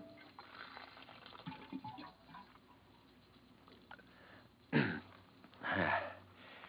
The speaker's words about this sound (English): Hang up your hat and go over to the water cooler for a drink.